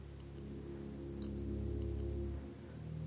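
A male yellowhammer, a yellow bunting, sitting on a telephone wire by a road sings a quick run of about seven thin, high notes ending in one longer drawn-out note, fairly faint and distant above a steady low rumble.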